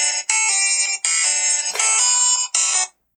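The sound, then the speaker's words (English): A phone ringtone rings out loudly, a bright electronic melody of rapid tonal bursts in a few quick phrases, playing alone for about three seconds before cutting off. “So who's calling you”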